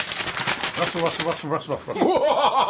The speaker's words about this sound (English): We have been told to be careful and not to ruffle the paper, but I'm going to go...